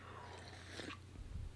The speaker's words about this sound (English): I'm going to take a sip of coffee. I do that every single time. I should drink my coffee before I start.